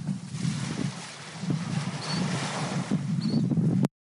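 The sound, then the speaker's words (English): Ocean waves wash against the shore in a steady, rushing roar with a rumbling low end, swelling and easing without pause. Two faint, brief high bird chirps appear partway through, and the sound cuts off abruptly. “It is dead quiet except for the waves and the birds.”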